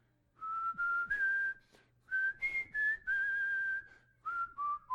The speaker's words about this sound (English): All right, we ready? All right. All right. If you're going to whistle with me, this is how it goes.